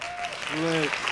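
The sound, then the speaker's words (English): A steady burst of hand clapping, dense and fairly loud for about a second, with a brief voiced whoop or shout rising over it partway through. “Hand claps.”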